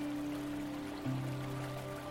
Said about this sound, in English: And as you reach the ledge, you step into the stream of water and feel the weight of it hitting the top of your head and shoulders. And perhaps you are surprised just a little by the weight of the falling water.